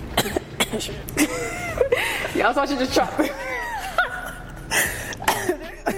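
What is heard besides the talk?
coughing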